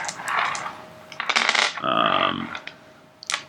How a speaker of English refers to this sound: Oh no, the last thing we have to do is we have to just roll default dice for the servility, savagery, and control.